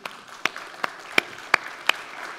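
An audience applauds as a woman is invited up to give a testimony, a steady wash of many hands clapping with several sharper, louder claps standing out at irregular intervals. No one speaks over it.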